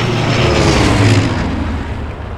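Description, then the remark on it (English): A propeller aircraft engine runs at a steady, loud roar, with a throbbing low drone and broad whooshing noise that holds constant throughout, with no voices. “get that engine up and running in 2 minutes, or you'll use your super senses to taste each and every one of your wrenches.”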